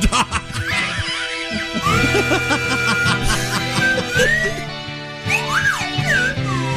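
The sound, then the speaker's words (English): Sliding, whistle-like tones weave through a dense band of music, rising and falling in short phrases near the front of the mix, with no talking. “Oh, chick, get ready with your whistle, darling.”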